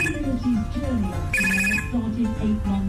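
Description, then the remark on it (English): A pet animal's voice mimics a telephone ringing at the start of an imitated phone conversation: warbling, pitched chirps that swell into a bright, buzzy ring burst midway before trailing off into more wavering tones. “can also do an entire phone conversation from the ring to the cough once you've had your conversation and you want to hang up.”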